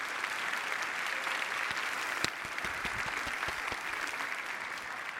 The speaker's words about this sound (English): Would you please give these good folks a round of applause?